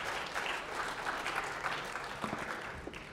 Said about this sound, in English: All right, so a round of applause again.